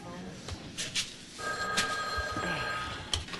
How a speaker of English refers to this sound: Yeah, I answered the phone. Will you stop ringing it?